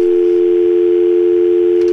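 A telephone that rang is picked up and the caller is gone: a steady, unbroken dial tone hums at an even, fairly loud level for the full two seconds, with no voices and only a faint click near the end.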